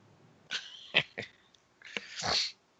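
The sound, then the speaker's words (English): A breathy imitation of a cat's meow comes in a few short, clipped bursts, then one longer drawn-out mew, moderately loud, with no talking. “I like the fake meow sound of Friday the 13th music”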